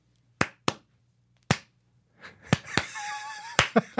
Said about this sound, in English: Double clap to single clap and being genuine with that.